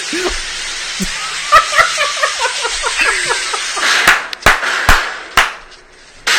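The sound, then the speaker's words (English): A garden hose sprays with a steady, bright hiss throughout as it is turned on a man to drive him off a yard, broken by several sharp slapping bursts toward the end, while muffled voices talk over the spray early on. “I'm not hurting you. It's water. See? That's not water. What is that? Oh, is it water? It's a hose.”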